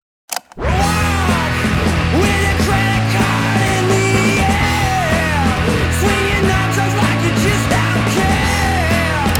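A loud, distorted indie rock song kicks in after a brief moment, with raw screamed vocals riding over crashing guitars, steady bass and pounding drums throughout.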